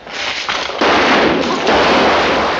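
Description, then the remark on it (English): A loud, sustained volley of rapid gunfire from a film scene in which Sergeant Zack shoots a prisoner in a fit of rage, the shots blurring into a continuous harsh crackle that surges in a few waves over about two and a half seconds, with no talking. “In a fit of rage, Zack unloads on the man.”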